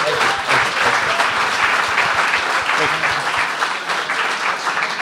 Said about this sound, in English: round of applause for JD